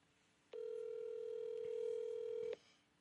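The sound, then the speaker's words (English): A telephone line tone sounds once as a phone call is placed, a steady electronic hum lasting about two seconds, clear, then cuts off abruptly, leaving quiet background. No one speaks. “So we're going to get him on the phone.”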